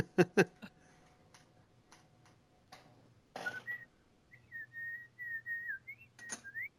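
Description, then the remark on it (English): A person whistles a short, wavering tune, clear, after a few sharp clicks and a brief breathy burst. No one speaks. “I don't know why I'm whistling. It's probably really loud.”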